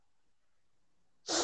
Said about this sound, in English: Oh yeah, yeah. I thought you did a fatty ass bump or some shit. It was sneezing your ass off.